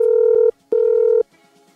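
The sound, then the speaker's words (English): Telephone dialing tones as SAFM radio calls a contest winner: two loud, steady electronic beeps at a low-mid pitch, each about half a second long, separated by a brief pause, with no talking. “All right, well, it's time to call today's winner. Let's give him a buzz.”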